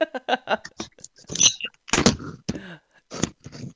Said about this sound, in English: Yeah, I knocked a whole bunch of shit at my desk over right then.